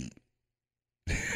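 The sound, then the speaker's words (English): A short low grunt, a second of silence, then a loud buzzing fart noise blown with the mouth, cut off abruptly. “He's not going star. He's going farts. One fart. We're going noises.”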